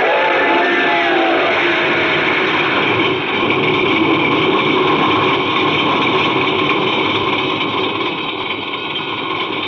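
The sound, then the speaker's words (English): A car engine, its starter having finally worked, runs at a steady idle, loud, with a dense, continuous rumble and whine that holds level for the whole stretch. No voices are present. “The starter worked at last.”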